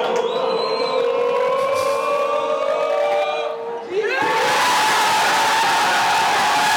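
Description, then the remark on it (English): A football team's players cheer at their club training ground while watching Arsenal lose to Nottingham Forest, which wins them the title: a sustained, rising collective yell gives way, about four seconds in, to a louder, noisier eruption of whooping and shouting that carries on to the end. “And so like clubs will have to release footage of their team winning the championship, but it's just them at their club training ground watching Arsenal lose to Nottingham Forest.”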